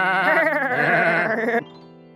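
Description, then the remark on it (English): A goat bleats loudly, one long wavering cry lasting over a second before cutting off to near silence, as newly bought goats are led back to a farm. No one speaks. “Come on, goats. Let's head back to the farm.”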